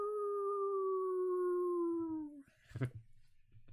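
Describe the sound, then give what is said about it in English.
A person imitates a wolf with one long, sustained howl that slowly drops in pitch over about two seconds, loud, followed by a sharp breath and faint rustling. “End it with a wolf howl.”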